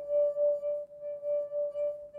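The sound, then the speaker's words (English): A wet finger circles the rim of a small wine glass, making the whole glass vibrate at one frequency and drawing out a steady, pure singing tone that holds for a couple of seconds with a gentle rhythmic swell, clear with no talking. “I'm vibrating this wine glass, and it's going back and forth, But because of the size of the glass, it vibrates at one frequency.”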